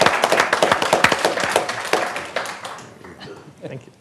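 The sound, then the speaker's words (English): An audience breaks into applause for Representative Poncho Nevárez, a Democrat from Eagle Pass, as he is introduced on a panel, a dense wash of many hands clapping that starts strong and gradually thins and fades over a few seconds. “Wait a minute, he didn't get no applause. Yeah, here we go, yeah.”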